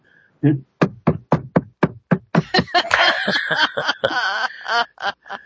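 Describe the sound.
During a break while the others are away, a voice imitates a heartbeat with a steady run of low, punchy thumps, then breaks into snickering laughter while the beat continues more loosely.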